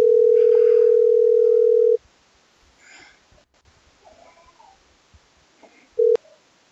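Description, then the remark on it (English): An outgoing call's ringback tone: a steady, loud electronic hum lasting about two seconds, then a quiet pause with faint background rustling, and a second ring starting just as it ends. “Can you hear the ring?”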